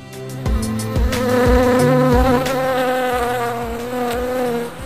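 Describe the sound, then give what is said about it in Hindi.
A loud honeybee buzz drones continuously with a wavering pitch, accompanied by a steady rhythmic thumping beat underneath. “इसी कड़ी में आज हम मधुमक्खी के बारे में जानेंगे।”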